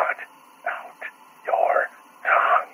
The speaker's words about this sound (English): The static whispers again.